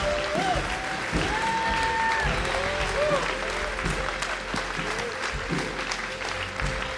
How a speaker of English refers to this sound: So I want us to stand to our feet, put our hands together, and honor man of God,